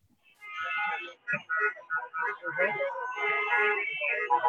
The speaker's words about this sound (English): So as you can see, cars keep rolling in, lots of signs, messaging communities not cuts. Lots of honking, lots of noise.